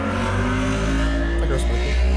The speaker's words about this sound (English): Jesus Christ, bro, I can't hear shit. The fucking motorcycle just passed by my house.